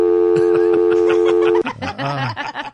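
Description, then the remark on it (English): A steady telephone dial tone drones loudly for about a second and a half while people chuckle over it, then it cuts off and voices talk and laugh. “I bet your kids don't even know what a dial tone sounds like,”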